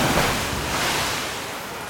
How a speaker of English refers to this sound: an enormous wave leaped from the depths and crashed down upon her mother.